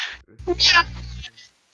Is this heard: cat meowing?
yes